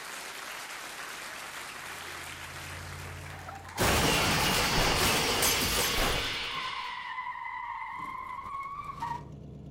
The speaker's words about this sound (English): Oh my god, what is... A hot rod just burst through the wall of the set?